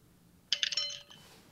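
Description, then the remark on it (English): Dice are rolled on a table, clattering briefly: a quick burst of sharp, bright clicks and taps that bounce a few times and settle within half a second, clear. “Roll another dice there, Akir. Just another dice? Yep.”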